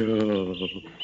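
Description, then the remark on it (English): A voice imitates little snowbirds cheeping, with a few short, high tweets over a sustained low vocal tone, fairly loud, lasting about a second. “Now listen to those little birds cheep.”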